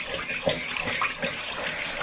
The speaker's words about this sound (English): Alright, so let's get the sugar out of the bottom here, because I can kind of tell that it's still not fully blended in. So we're mixing up the water, sugar, yeast, and the butter.